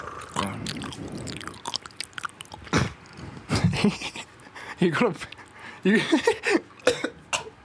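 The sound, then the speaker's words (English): Wet chewing and slurping of ramen noodles in irregular bursts, with smacking mouth sounds, a brief cough, and some muffled vocal noises between bites. “We're out here eating ramen.”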